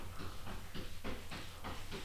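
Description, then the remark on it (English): Cats fighting, a fast run of harsh hissing bursts repeating roughly every quarter second over a low steady hum, fairly faint and with no one talking. “Damn, them cats really are at it.”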